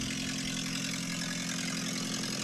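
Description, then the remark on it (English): A highly built JDM car engine runs as the car drives away, with a steady, even drone and a low rhythmic throb, holding the same loudness throughout without revving, continuous with no voices. “Surely this is a JDM highly built engine.”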